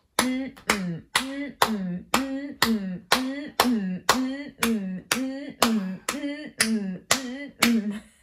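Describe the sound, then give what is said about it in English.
A steady rhythm of about thirteen sharp hand claps, roughly two per second, done while shaking the head side to side and moving the tongue in and out. Each clap runs straight into a short, mid-pitched voiced sound, giving a repeated chanting pattern. “So you should be clapping your hands, shaking your head from side to side, and your tongue going in and out.”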